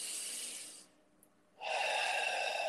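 An airy breath fades out, then after a short pause a deeper, louder breath is drawn in, rushing and steady, as part of a guided meditation breathing exercise. No one speaks.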